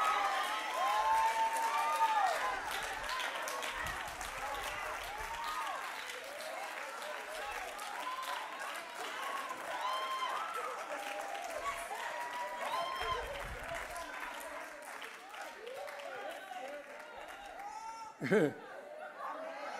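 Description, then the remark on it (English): An audience of women shouts and applauds steadily, high excited voices and whoops layered over continuous clapping, with a brief louder burst near the end. “I got all the women on my side right now. Feels real good. Keep shouting, ladies.”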